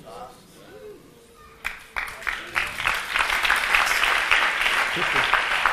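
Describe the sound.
A few scattered claps quickly swell into steady, dense applause from a large audience during a sermon, growing louder toward the end, with a faint voice heard briefly beforehand.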